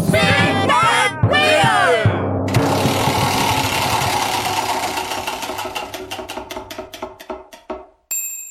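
A game show prize wheel clatters with rapid ticks that gradually slow to a stop on 'restaurant', over a noisy crowd that cheers at the start, ending with a bright ding.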